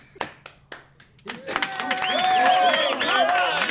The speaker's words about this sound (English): Hang on a second. Keep clapping. Keep clapping, bud. Keep clapping.